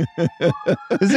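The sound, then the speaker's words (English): A siren wails in the background, a steady sustained tone holding underneath a series of short voice-like bursts that come in a regular rhythm. “Look at the sirens in the background.”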